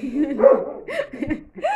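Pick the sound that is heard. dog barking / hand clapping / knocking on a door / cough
dog barking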